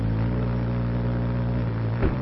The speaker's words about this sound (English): The smallest birds, they take their name from the humming sound made by their rapid wing beats. Darting from flower to flower, the hummer poises in midair.